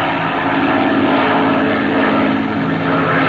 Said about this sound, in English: He's banking the plane.